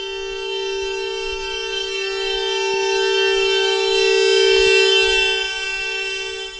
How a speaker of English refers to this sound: A car alarm, gradually getting to 5 meters away, 100 decibels.